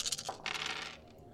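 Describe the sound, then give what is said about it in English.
Three dice are rolled for a game check, clattering and rattling briefly across a hard surface, a bright burst of clicks lasting about a second before settling into quiet, with no voices. “Out of three dice, I got two successes.”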